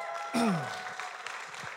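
A crowd applauds in a steady, dense wash of clapping, and a single cheer with a falling pitch rises above it near the start.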